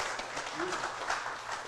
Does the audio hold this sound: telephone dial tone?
no